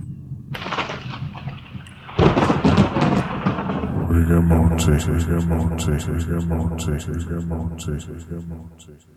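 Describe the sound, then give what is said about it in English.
A thunderstorm with two loud thunderclaps rolling into a long rumble over steady rain, joined after a few seconds by sustained tonal sounds layered beneath the storm. “It's really nice to hear from you and to hear the special effects. Yeah. I love that lightning.”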